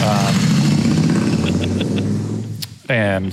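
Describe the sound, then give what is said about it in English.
A motorcycle engine rumbles loudly on a very busy street, its deep drone steady for a few seconds before dipping briefly and surging again. “We are on a very busy street, so you'll probably hear a lot of motorcycles and fire trucks and ambulances.”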